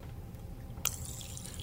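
A quick squirt of water into a person's mouth, with a sharp start and a short spray that keeps hissing faintly. It sounds quiet, with no talking.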